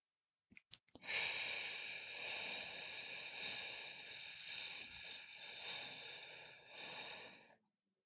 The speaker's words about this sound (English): I'm going to think that while I do my box breathing for a count of six.